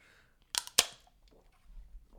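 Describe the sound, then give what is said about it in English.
Two sharp, crackling pops in quick succession as a 16-ounce can of Liquid Death water is punctured for shotgunning, followed by a quieter stretch and a faint low gurgling rumble. “I'm going to try and shotgun this.”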